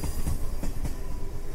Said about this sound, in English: So, Gunny, bring that train in.